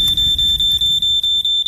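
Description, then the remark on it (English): A smoke alarm beeps loudly in the middle of the night as a household fire spreads, a piercing high-pitched tone pulsing in quick, steady succession, with a low rumbling noise underneath and no voices. “Make sure you fit a smoke alarm and test it weekly.”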